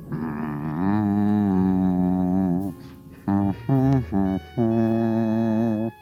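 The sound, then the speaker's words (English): A voice hums a melody down a hall: one long wavering note, then three short clipped notes in quick succession, then another sustained, steady tone, fairly loud and alone. “But suddenly, I heard a humming down the hall.”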